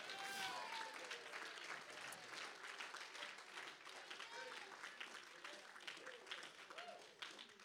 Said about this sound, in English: Now the half of you that needed to be clapping weren't clapping.